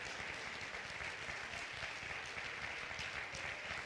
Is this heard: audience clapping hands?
yes